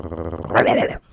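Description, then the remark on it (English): A dog growls, a low rumbling snarl that swells louder halfway through before cutting off abruptly, about a second long with no talking over it. “Who let the damn dog out?”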